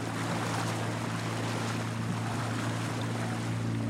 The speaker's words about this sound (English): I'm back on the boat from Inish Bofin, back to Maharorty on the Donegal mainland